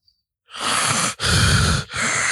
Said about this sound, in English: We both can't be breathing. I don't know if I can wait. We both can't be sitting here breathing like that.